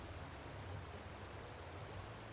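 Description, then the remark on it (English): A steady, continuous rush of flowing water from an underground river at the end of a slope, holding an even hiss with a low rumble beneath it and no voices. “Actually, yeah, you hear a little bit of rushing water.”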